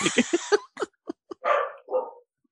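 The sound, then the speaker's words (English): A small puppy barks: a quick run of sharp, high yaps, then a few scattered short barks, ending with two longer, rougher barks. No one speaks. “He's a cute little puppy. What's wrong, Precious?”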